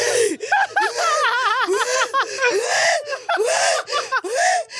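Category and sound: vocal imitation, imitated heavy panting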